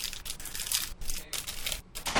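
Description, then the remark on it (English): Someone chews a cracker with a steady series of dry, crackly crunches, roughly six or seven bites in a couple of seconds, fairly loud, with no talking. “I hope my crunching isn't picking up on the mic too much.”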